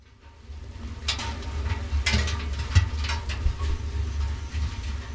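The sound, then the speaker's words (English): Scattered sharp ticks and metallic taps of grasshoppers beating against dozens of unpainted iron sheets and sliding into old, rusty oil drums set up by grasshopper trappers, an irregular pattering like light rain over a steady low rumble, with no voices. “That is not the sound of rain, but rather grasshoppers beating against iron sheets and sliding straight into old, rusty oil drums.”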